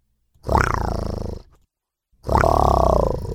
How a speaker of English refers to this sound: Bellowed the unwelcome lion again, causing Jafaru to pick up his speed for another mile.